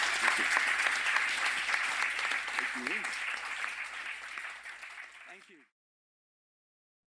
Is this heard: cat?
no